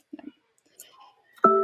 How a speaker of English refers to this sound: Oh, there. Did you hear that chime? Oh my God. Time's up. Time's up. Time's up. Somebody just chimed us.